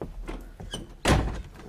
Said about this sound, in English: Now, close the door.